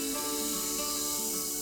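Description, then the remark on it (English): A steady fizzing hiss of vinegar poured into baking soda in an experiment, the mixture turning red, continuous and even throughout with no talking. “It's so fizzy, it looks like soda.”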